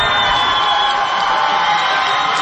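crowd cheering

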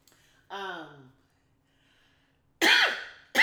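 cough

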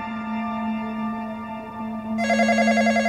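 telephone ringing

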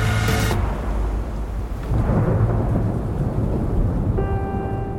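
thunder rumbling

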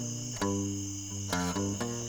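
cricket chirping sound effect

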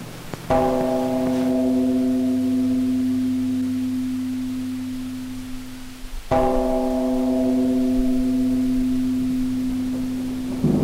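bell tolling

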